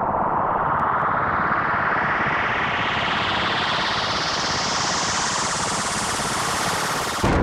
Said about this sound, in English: Another explosion shreds my eardrums, followed by a horrible, burnt pork chop smell.